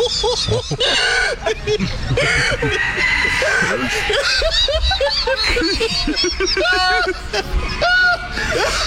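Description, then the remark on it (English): Chickens cluck and squawk repeatedly in the background, with rising harmonic calls, while a chicken farmer and a reporter laugh and talk loudly over them throughout during an interview. The chickens belong to the farmer. “You can hear his chickens in the background.”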